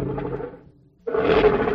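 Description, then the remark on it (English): A tiger roars loudly in two deep, rumbling bursts separated by a short pause, the second growl stronger and more sustained than the first. “Repeat this key phrase. That's not my tiger.”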